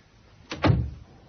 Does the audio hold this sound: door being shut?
yes